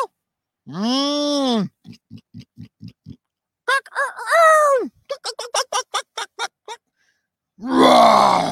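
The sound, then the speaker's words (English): A person imitates a lion's roar with their voice as one of a series of animal sound imitations: a long, deep groaning roar, a run of short rhythmic grunts, another wavering roar, quick chuffs, then a final harsh, breathy growl. “That's a lion.”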